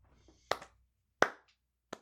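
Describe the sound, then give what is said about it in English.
Three sharp hand claps, spaced unevenly over about two seconds, fairly loud, with no talking. “I'm clapping.”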